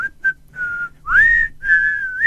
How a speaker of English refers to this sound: Yes, we're whistling.